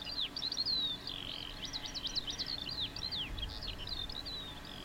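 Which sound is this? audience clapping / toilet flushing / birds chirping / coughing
birds chirping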